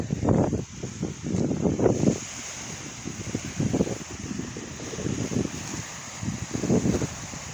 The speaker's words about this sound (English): Because it's windy out here. And you're going to hear the water. And I'm trying to get as close as I can right now. I want you to hear this natural waves of the lake or ocean. Whatever you want to call it.